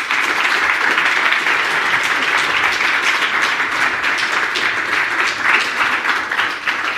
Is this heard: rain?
no